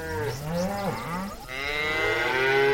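A cow moos in a long, drawn-out bellow, its low harmonic voice wavering at first and then rising into a louder, sustained, strained call. No one speaks.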